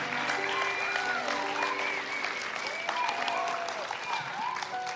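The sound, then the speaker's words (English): A steady wash of audience applause runs throughout, many hands clapping at once at an even, sustained loudness, with faint cheers and voices rising over the clatter, as a man is welcomed up onto the stage. “Y'all keep clapping.”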